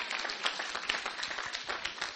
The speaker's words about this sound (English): Well, how come some of you are not clapping?